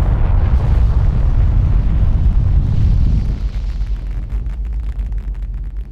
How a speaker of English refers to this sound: And now we're passing out of Earth's atmosphere, so any minute now we should feel the engines stopping as we make our way towards the moon.